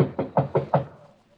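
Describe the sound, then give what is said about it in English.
Four quick knocks on a wooden bedroom door, evenly spaced, followed by a short fading tail and no voices. “Better knock harder.”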